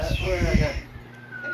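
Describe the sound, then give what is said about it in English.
Someone mimics a bird call with their voice: a burst of voiced, chirpy vocalizing, then a thin, sustained whistle-like tone trailing off, moderately loud. “And then it has that sound effect where like a bird in the background.”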